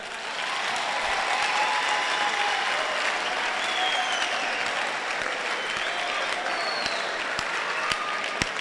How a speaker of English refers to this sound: Clap for Jesus.